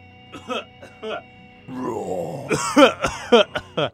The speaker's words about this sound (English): It's super metal. Coughing is very metal. Being sick is metal.